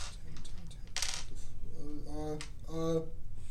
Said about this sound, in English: So, what is the damage dice? Are you using one-handed or two-handed? I'll do two-handed. Two-handed, yeah. So, roll 2d10 now.